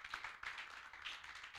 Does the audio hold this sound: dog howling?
no